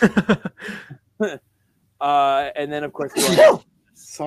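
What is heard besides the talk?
sneeze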